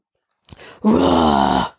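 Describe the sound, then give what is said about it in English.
A person imitates a bear growl: a short breathy lead-in, then one loud, sustained, low rumbling vocal growl lasting under a second with a rough, throaty texture. “What's a bear growl?”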